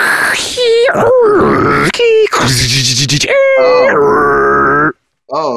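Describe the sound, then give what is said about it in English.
A voice imitates a dial-up modem connecting, with wavering, warbling tones broken by loud, hissing static bursts, then a brief pause and a final short squeal. “They have equated it to a dial-up modem.”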